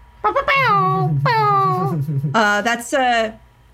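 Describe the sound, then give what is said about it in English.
A voice, attempting to beatbox, imitates an air horn with about four loud, drawn-out tonal blasts, each sliding downward in pitch, over a low buzzing hum; the result sounds more like a dog. “I wanted it to sound like a really cool air horn, but I don't know how to beatbox.”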